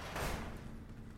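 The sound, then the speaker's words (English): A door in a test facility is opened with a single heavy clunk and a brief rush of noise, fading into a low steady rumble afterward. “Number one, open this door.”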